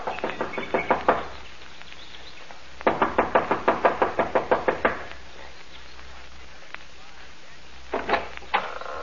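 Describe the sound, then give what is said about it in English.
Rapid, insistent knocking on the wooden front door of a small mountain lodge in three bursts: a quick run of raps, a longer flurry after a pause, then a few more knocks, as a young woman knocks impatiently. Fairly loud. “gets out of the car and runs up the steps of the lodge to the front door. She knocks impatiently, looking about anxiously.”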